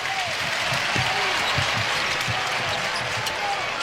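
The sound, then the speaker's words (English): A large arena crowd at a Marquette college basketball game cheers in a loud, steady roar after a made three-pointer, with dull thumps of a bouncing basketball and brief shoe squeaks underneath. “Here comes the crowd.”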